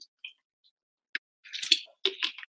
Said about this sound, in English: Excuse me, I want to take a drink of water so I don't run out of vocal cords.